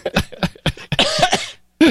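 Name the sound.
man coughing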